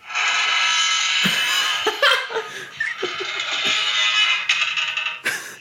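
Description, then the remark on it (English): A voice mimics a big, old, squeaky gate creaking open, a long strained, high-pitched squeal that wavers and breaks into short squeaky bursts before one final creak, loud and with no other sound. “That's us letting her in. It's an old gate. It's very squeaky.”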